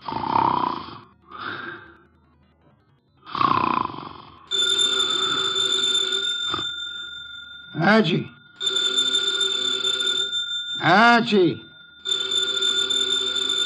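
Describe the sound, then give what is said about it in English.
A few slow snores from the detective Nero Wolfe in his office chair give way to a loud, continuous telephone bell ringing from the phone on his desk, its steady jangle broken twice by short vocal sounds before it resumes. “The phone, if you please, Mr.”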